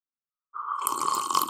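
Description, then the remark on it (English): Bubbling gurgle of someone blowing through a straw into a glass of milk, starting after a brief silence and continuing steadily, fairly loud, with no talking. “He's blowing his bubbles for you, ladies and gentlemen.”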